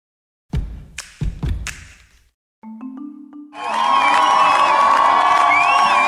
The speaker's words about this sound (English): Hundreds of Iranians gathered at the airport in Tehran to greet and cheer for rock climber Elnaz Rakabi early this morning. They chanted, "Elnaz is a heroine."